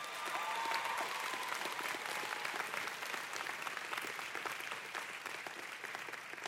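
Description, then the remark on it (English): Sustained applause from a large audience at UC San Diego, a dense wash of clapping that holds steady and fairly loud for several seconds without a break. “So one more time, just give them a big applause, everybody.”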